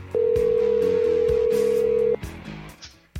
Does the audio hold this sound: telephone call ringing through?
yes